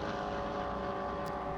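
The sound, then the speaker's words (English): A steady, loud drone of race car engines as the leaders, including a McLaren, stream through on the track and come up to slower traffic including the number 98 Hyundai, a continuous mechanical roar with no distinct pass-by standing out and no voices. “McLaren just edges out maybe a car's length, and they're coming up to traffic in the shape of the number 98 Hyundai, which has really dropped away down into 7th position now, that car.”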